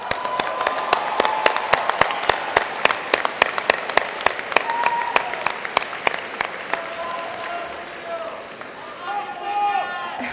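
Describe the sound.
At a commencement ceremony, the graduating class of 2011 applauds their families with dense, sustained clapping, thinning out toward the end as scattered voices and cheers rise over the fading claps.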